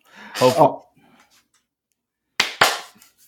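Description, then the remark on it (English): A short voiced utterance, then after a pause two sharp hand claps in quick succession, each a loud crisp smack with a brief tail. “You clap it.”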